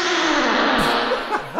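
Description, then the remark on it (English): A fart played back through heavy reverb, a loud, buzzy blast smeared into a washy echoing tail with a few wobbling pitch dips near the end, lasting under two seconds with no talking. “Let's hear it again with some reverb.”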